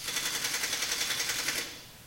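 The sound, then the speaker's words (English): Rapid, evenly spaced keyboard clicks rattle along in a quick mechanical rhythm for under two seconds, then cut off, leaving only a faint hiss. No voices are heard. “that guy types fast. It sounds like he's only typing like 2 that letters.”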